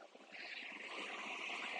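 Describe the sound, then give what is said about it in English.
Steady rushing of ocean water with a soft splashy hiss, surf washing in and out over the shore, fairly loud with a slight swell in volume and no voices. “Allow the stress as the water comes in. It's the ebb and flow.”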